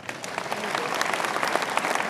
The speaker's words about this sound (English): Clap for her.